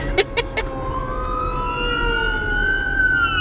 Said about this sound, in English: there's a fire truck coming, so it's gonna be loud. Here we go.